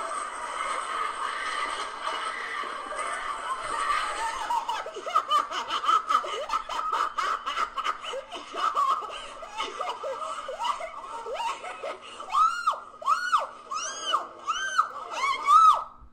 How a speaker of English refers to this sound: Okay, there's more of this, but the voice you heard that was screaming and laughing was some silly-ass Negro girl who was filming all this on her phone and everything.